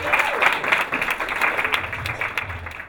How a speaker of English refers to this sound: Please, big round of applause